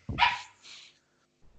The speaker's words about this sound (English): You were brought in here to stop barking.